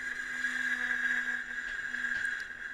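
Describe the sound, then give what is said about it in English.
A violin bow drawn across a metal Huntley and Palmer's biscuit tin makes the metal resonate in a steady, sustained metallic drone, a bright ringing tone over a lower hum that holds without a break, with no voices. “Just by using a violin bow on them, you cause the metal to resonate.”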